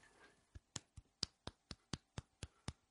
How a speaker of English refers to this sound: Bitch-ass golf clapping.